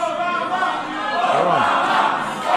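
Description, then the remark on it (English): Reporters in a room chant Obama's name together, loud and sustained, with many overlapping shouts blending into one steady roar that swells again at the end. “That's the reporters in the room chanting Obama's name.”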